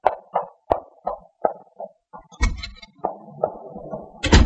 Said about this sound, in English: That's Blaine, just going out the door.